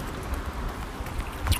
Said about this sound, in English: Today it's actually raining, but yesterday I told someone that I would start a podcast today, so here I am.